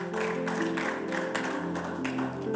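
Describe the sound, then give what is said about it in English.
An audience claps steadily for the Lord, a dense wash of hand claps with rhythmic surges, over sustained music with held tones underneath. No one speaks. “Give the Lord a good clap of it.”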